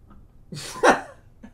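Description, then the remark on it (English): A single short, loud burp bursts out, rough and throaty, lasting under a second, followed by a faint breath and quiet. “Is that burp included?”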